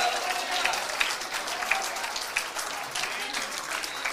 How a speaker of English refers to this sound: Can we clap our hands? Believing God is going to move in a mighty way in this place today.